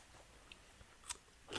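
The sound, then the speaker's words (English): A crisp bite into a crunchy homemade dill pickle, brined for about five days, with a short crackle followed by a louder, fuller crunch, and no talking. “That's like a Vlasic crunch.”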